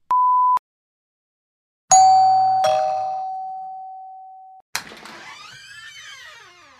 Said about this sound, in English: Hello? Huh, there's, the doorbell rang, but there's, no one here.